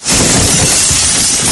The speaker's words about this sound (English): And glass ceiling. Let's hear it shatter. Shatter it, man. Shattered.